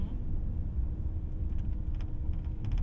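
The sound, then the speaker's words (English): Steady low road rumble from inside a moving car driving past a row of houses, a continuous droning hum with faint, brief clicks and rattles near the end, heard alone without talking. “So we're driving past a whole bunch of houses.”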